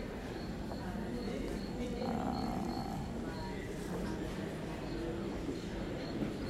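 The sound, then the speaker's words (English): A cricket chirps in a steady, rhythmic series of short high-pitched pulses, running throughout over a constant low rumbling background noise. “You hear that cricket?”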